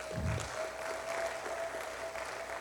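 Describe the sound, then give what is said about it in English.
A church audience gives the Lord a round of applause, a dense wash of many hands clapping at an even level, with a faint sustained tone running underneath and a brief low thump at the start. “If you want some more peace, give the Lord a good round of applause today.”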